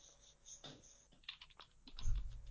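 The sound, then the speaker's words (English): Quick, uneven clicks of someone typing on a computer keyboard to look something up on Google, moderately quiet, with a low thump near the end and no talking. “Oh, somebody's looking it up. I can hear the keys.”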